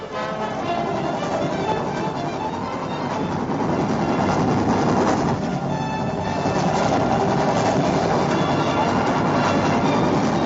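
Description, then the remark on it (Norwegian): A rotary snowplow train rumbles steadily along the railway between Neløv and Arendal, Norway, clearing snow about 2 meters deep, with a dense, continuous mechanical roar and churning noise, loud throughout, with no talking. “For første gang kommer den roterende snøplogen til Froland stasjon på strekningen mellom Neløv og Arendal.”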